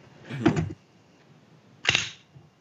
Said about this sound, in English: You know, the stupid little ejection port door.